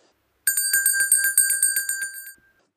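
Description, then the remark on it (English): A bright, high-pitched bell rings in a fast, steady trill of about a dozen quick strikes for two seconds, with a sustained metallic tone, then stops abruptly into silence. “Pause for the sound of an ominous bell tolling.”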